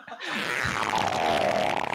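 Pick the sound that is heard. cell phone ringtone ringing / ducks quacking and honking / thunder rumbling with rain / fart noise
fart noise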